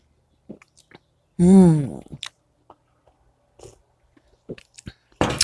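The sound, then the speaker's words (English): Quiet slurping sips of coffee and small mouth clicks, broken by a loud, drawn-out voiced hum of satisfaction, then a few more soft swallows and a brief rustle at the end. “Oh, and I forgot, I was so busy looking at the garden, I even forgot to sip my coffee.”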